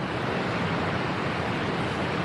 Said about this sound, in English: That's the waterfall. Nice.